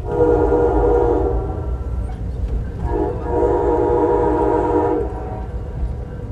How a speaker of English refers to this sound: That built environment threatened by rising seas includes oceanfront homes, roads, piers, power plants, and this very train I'm riding on.